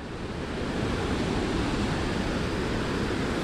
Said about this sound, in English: It ends on gigantic rocks that jut out over the impressive falls that cross the breadth of the Churchill River.